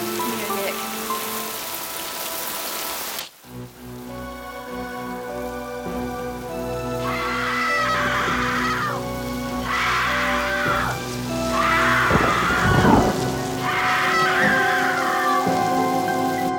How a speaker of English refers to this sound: And then it starts downpouring